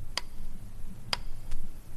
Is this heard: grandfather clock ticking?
yes